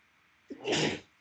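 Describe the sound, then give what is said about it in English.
A single loud sneeze: a short sharp intake at the start, then a forceful, breathy burst lasting about half a second before fading out, with no talking. “Bless you, dude. Bless you.”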